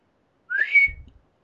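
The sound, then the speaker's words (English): A short, breathy whistle attempt: one thin rising note that wavers and fades after about half a second, ending in a soft low thump. No one speaks. “I can't even fucking whistle.”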